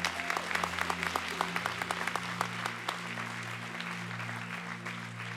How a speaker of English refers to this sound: Come on, let's clap our hands for our team. Thank you so much, everybody.